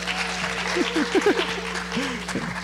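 An audience claps steadily for a few seconds for an 11-year-old boy called up as an assistant, a dense, crackling wash of many hands, with a few brief voices and cheers rising through the noise.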